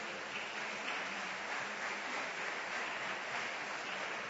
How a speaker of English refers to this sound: You missed a good place to clap your hands for the Lord.